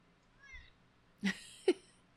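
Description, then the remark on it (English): A male cat meows twice in quick succession, two short, fairly loud cries after a faint higher chirp, with a quiet room hum underneath and no one talking. “He's such a human being, this cat.”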